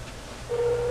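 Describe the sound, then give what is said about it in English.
After a brief low hum, a steady mid-pitched telephone ringing tone starts halfway through and holds unbroken to the end as an outgoing phone call rings on the line. No one speaks. “It's ringing.”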